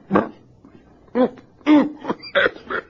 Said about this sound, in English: Nothing to worry about. Just a cough that's affected me these last few days.